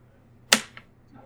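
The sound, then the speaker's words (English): A die being re-rolled clatters onto a hard surface: one sharp clack followed by a softer bounce and a faint final tap, with no talking. “I will use my accurate to re-roll one of my dice.”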